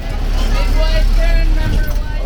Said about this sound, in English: One of the wheels is going to go off this curb here. All right, come on. The bus bottoms out in between a line of ice cream trucks parked on 3rd Street Southwest, just across from the Capitol reflecting pool.